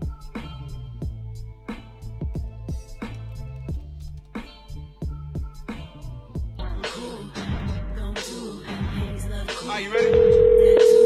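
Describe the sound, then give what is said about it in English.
A loud, steady telephone busy signal cuts in abruptly at the very end, following a stretch of rhythmic music with thumping beats. “What do you mean, busy?”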